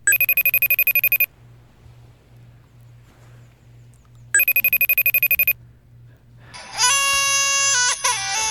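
An electronic FaceTime video call ringtone trills in two long bursts separated by a pause, loud, followed by a rising wavering tone like a baby's cry; a low hum runs underneath throughout.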